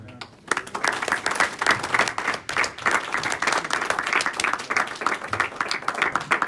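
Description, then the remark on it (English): A church audience breaks into sustained applause for some gentlemen, many hands clapping in a dense, crackling wash that starts abruptly and stays loud and steady throughout, with a faint voice or two underneath. “So give these gentlemen a hand clap, because it's not as easy as it looks.”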